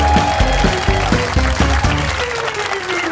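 A crowd at a show claps loudly and steadily throughout, welcoming a duo back to the stage, the dense applause running over a rhythmic, pulsing musical beat with no break for the full few seconds.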